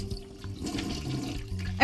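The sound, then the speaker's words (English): A toilet flushes with a steady, rushing gurgle of water that swells into a louder surge right at the end, with no voices. “Flush that.”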